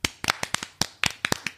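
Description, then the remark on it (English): A quick run of about a dozen sharp hand claps in an uneven rhythm, crisp and fairly loud, with no voices over them. “Okay, clapping it out.”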